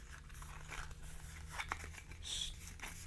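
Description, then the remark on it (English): Quiet paper rustling and scraping, with a few soft crinkles and a brief tearing sound as a USB-C charger is pulled out of a paper storage holder in a new phone's packaging, over a steady low hum. “storage holder for the USB-C charger, which I've just pulled out.”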